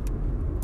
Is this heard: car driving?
yes